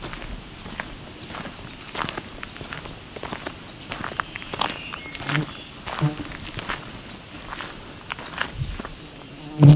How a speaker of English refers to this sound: Coming up on a black-throated green warbler.